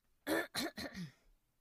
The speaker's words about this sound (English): The 14-year-old cleared her throat.